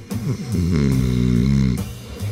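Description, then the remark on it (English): A voice imitates the snore of a little old lady in the front row: one long, loud, low rumbling snort that wavers in pitch for about two seconds, then trails off into a short grunt. “Speaking of sleeping, I heard a little old lady snoring in the front row.”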